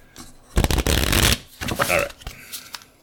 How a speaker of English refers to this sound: So let me shuffle these up and then we'll see what else we get.